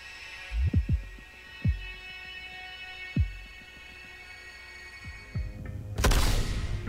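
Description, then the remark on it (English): An in-game Xbox notification sound signalling that a friend has accepted a game invite: a loud, bright whooshing burst near the end, preceded by a few low, soft thumps over a steady tonal hum. No one speaks. “And there's the in-game sound cue letting me know that my friend has accepted my invite.”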